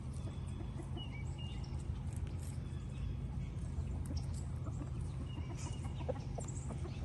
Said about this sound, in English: Such brave, happy ducks. Y'all have no idea what a big deal this is for them to go in the pond and go swim and take a bath. Like, I'm so happy for my ducks right now.